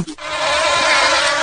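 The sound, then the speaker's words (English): A dense, steady buzzing of many bees swarming together, loud, starting abruptly and holding a constant drone throughout with no voices present. “So one bee and then a bunch of bees.”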